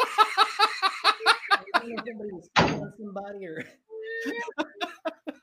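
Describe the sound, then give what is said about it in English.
A door is unlocked and opened once, a sharp thunk just past the halfway point, with people talking before and after it and some clicking and shuffling. “Unlock the door so I can get in," and then of course Maverick comes rolling in”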